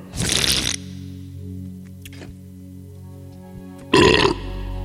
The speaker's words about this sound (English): Sorry about that. I've been belching nonstop.